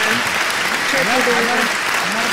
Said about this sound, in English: The crowd goes wild.